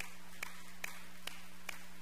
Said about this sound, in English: 58 kids came to Jesus Christ. Let's try that clap again. That's so exciting.